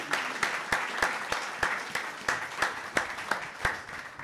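An audience applauds in a dense, steady wash of clapping, with sharper individual claps standing out at a fairly regular beat throughout. No one speaks over it.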